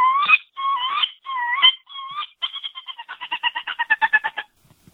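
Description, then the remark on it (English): A voice imitates a wood duck: four rising, squealing whistles, then a quick run of about fifteen short, shrill peeps that speeds up and fades. No talking. “Wood duck. I can do wood duck.”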